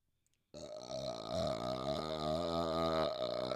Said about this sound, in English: But, hold on, I got a burp.